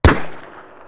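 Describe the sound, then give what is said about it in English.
A single loud gunshot, a sniper shot in a supermarket parking lot in Wheaton, Maryland, cracks sharply, then its echo rolls away and fades over most of a second. No voices, just the one blast and its lingering tail. “55-year-old James Martin collapsed in a supermarket parking lot in Wheaton, Maryland, killed by a shot to the torso.”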